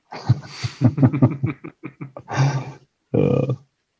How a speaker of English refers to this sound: Alrighty, so I'll have to persevere with the dogs in the background.